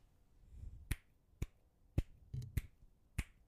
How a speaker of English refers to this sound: Can you clap again?